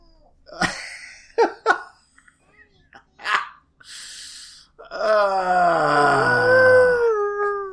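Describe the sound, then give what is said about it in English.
A cat whining to go outside: one long, loud, drawn-out, tonal cry that slowly sinks in pitch and then trails off, following a few brief, clipped voice sounds. “Was that crying or what was... Whining!”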